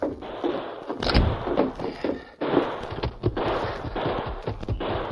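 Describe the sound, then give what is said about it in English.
Rapid bursts of gunfire on Main Street crackle one after another in a dense, noisy barrage, loud, with sharp repeated shots over a rough background roar. “Sounds like... Gunfire. It's over on Main Street.”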